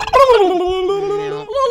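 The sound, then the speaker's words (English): A person's voice imitates a turkey gobble: one loud, sustained vocal call that slides downward in pitch, holds a steady buzzy tone, then lifts briefly at the end. “I'm a turkey.”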